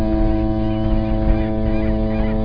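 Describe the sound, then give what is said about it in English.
A loud, deep lighthouse foghorn blast drones steadily for the whole moment, a thick low tone with rich buzzing overtones that never breaks or fades, with no voices. “What's left? Foghorn! I've got to try the foghorn!”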